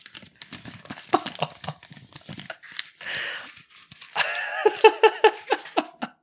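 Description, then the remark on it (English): Crisp crackling and crinkling of a sheet of paper being crumpled by hand and thrown on the ground, with irregular bursts of rustle over several seconds and a brief giggle-like sound near the end. “That was me crumpling up the paper and throwing it on the ground.”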